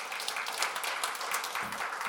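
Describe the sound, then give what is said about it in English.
An audience claps steadily throughout, a dense, even patter of many hands, moderately quiet, with no voices rising above it. “Yeah, clap for God.”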